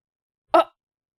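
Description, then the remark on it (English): A cat lets out one short, loud screech, a sharp harmonic cry lasting only a split second, with silence on either side and no talking. “There's probably a cat screaming.”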